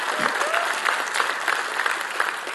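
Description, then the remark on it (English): A church crowd cheers and applauds in a steady, dense wash of clapping, with a few raised voices whooping over the continuous applause throughout. “And of course, they're going to cheer because they agree with me.”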